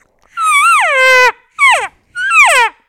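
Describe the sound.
Three whiny, nasal elk cow calls blown gently on a pink diaphragm call, each note rising then sliding downward, the first long and wavering, the next two shorter; loud, no talking.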